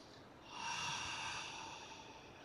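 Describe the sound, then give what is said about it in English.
A single slow, deep breath drawn in through the nose, airy with a soft hissing rush, lasting about two seconds before easing off. No one speaks. “And if those breathing sounds is weird for you, just let it go.”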